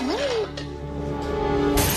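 A rising electronic whine and steady humming tones build up, then a glass window on an interstellar starship suddenly shatters in a bright, crackling burst of breaking glass at the very end.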